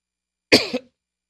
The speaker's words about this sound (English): Coughing all the way through this. No idea why I'm coughing so much today. It could be the sun chips that I'm eating, you know, because it's very dry and they stick at the back of my throat.